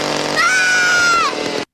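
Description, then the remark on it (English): A new chainsaw revs up to a loud, high-pitched whine, holds it for about a second, then drops back toward idle before cutting off abruptly, with no one talking. “do you want to see my new chainsaw and hockey mask?”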